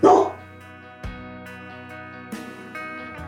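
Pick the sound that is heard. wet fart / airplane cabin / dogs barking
dogs barking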